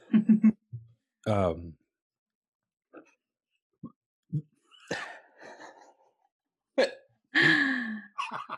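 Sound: hiccups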